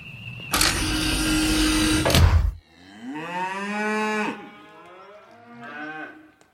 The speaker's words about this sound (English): We appear to be in a room of heifers, Captain. So I can see. Not just heifers.